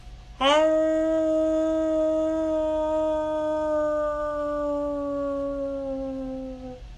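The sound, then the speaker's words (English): People howl together in imitation of wolves as a birthday howl on a count of three: one loud, sustained howl that starts abruptly, rises briefly, then holds and slowly sinks for about six seconds before cutting off. “Birthday howl on the count of three. Everyone, I need you to join in.”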